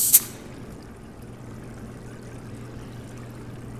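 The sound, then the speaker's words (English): A quick, sharp hiss of pressurized air bursts out from the top of a tank for a split second as its feeding hatch is opened, then fades into a steady low hum that continues on its own. “A small, sharp hiss escaped the top of the tank as the pressurized air rushed out, brushing against Lily's fingers as she opened the feeding hatch.”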